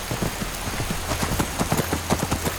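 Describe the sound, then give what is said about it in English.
Steady rain pours down at night in a video game, a dense hiss of drops pattering on a hard surface with scattered sharper taps, over a faint low rumble. No one speaks. “It's a dark and rainy night out here.”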